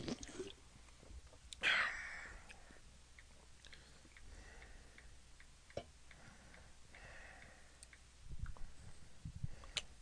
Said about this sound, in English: I'm going to take a fat sip.